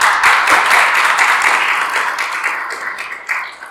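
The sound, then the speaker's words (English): A crowd at The Science of Doctor Who show applauds as the speaker arrives, before the talk begins, a dense, crackling wash of many hands clapping at once that holds steady for several seconds and eases slightly toward the end. No one speaks. “It's always nice when you get a round of applause before you've actually done anything except showed up.”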